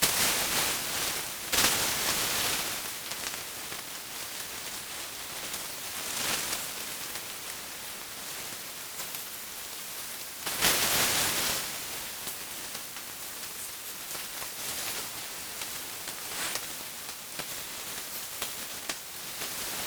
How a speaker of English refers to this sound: Water sounds take up the whole sound spectrum. Splashes, running water, showers. I'm slowly letting the humans come in.